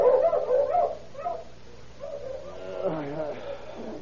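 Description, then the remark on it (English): A sheep rancher's dogs bark savagely outside a little trailer house, a rapid flurry of harsh barks and yelps that pauses briefly, then resumes with higher, whining yips and snarls. “Suddenly, the savage barking of his dogs outside the little trailer house awakened him in his slumber.”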